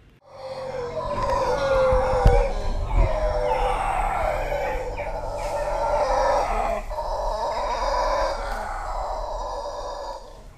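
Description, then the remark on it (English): Howler monkeys roar together in a long, guttural morning chorus, a deep rasping sound that swells and ebbs continuously for about ten seconds with no talking. “When howler monkeys first wake up, they announce to the world that they're ready to start the day with a nice big howl, usually around 4 or 5 a.m., which must be pretty unfortunate for the local residents.”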